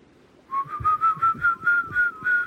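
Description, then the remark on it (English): Several whistles in different melodies rise gradually in pitch up to a certain point over and over again, pulsing in short repeated bursts, clear, with faint rumbling noise underneath and no talking. “All of the whistles now, they were going in different melodies, and they now all just seem to be ascending up to a certain point over and over again.”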